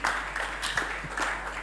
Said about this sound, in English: Please clap for Pastor Etefia.